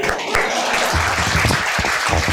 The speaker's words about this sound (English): We can still clap for her.